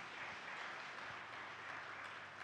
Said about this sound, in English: Kita beri tepukan. So we give a clap to him, yeah. To them.